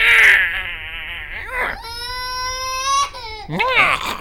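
An infant wails in long, high, strained bursts with wavering pitch, breaking briefly between cries before rising into another loud, piercing sob.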